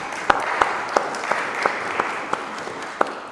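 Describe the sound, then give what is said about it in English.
An audience applauds a couple's 45th wedding anniversary steadily, a dense wash of clapping with a few sharper individual claps popping out at a regular beat, moderately loud and with no talking. “so I think we should give them a wee round of applause for that.”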